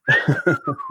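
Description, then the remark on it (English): A person whistles a brief cartoon-style tune, one clear note gliding slowly downward over about a second while choppy, rhythmic pulses of sound beat underneath. “Then the guy like does that whistle.”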